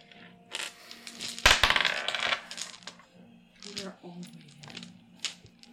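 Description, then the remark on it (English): Dice clatter and tumble across a hard table in a quick burst of rattling clicks, loudest early on, followed by quieter murmured speech. “Nat 2. Third die.”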